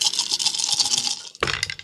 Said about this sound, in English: Is it only the luck dice that explode, or only the six? When you roll with luck, all the sixes explode. No matter if it's a luck die or the regular die.